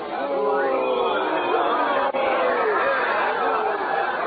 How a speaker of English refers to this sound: Listen, my uncle, he's coming through the street now. They're cheering him. Cheering, is it? That's a strange kind of cheering, I'm thinking.